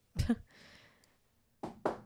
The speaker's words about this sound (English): Knock on wood right now.